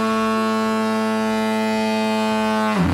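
A deep, sustained foghorn blast from a ship, loud and steady with rich low harmonics, holding for nearly three seconds before abruptly cutting off.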